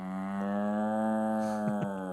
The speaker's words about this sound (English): That's clearly somebody doing it, not a real cow. We're cattle graze. That's a producer. Maybe we need a cow noise in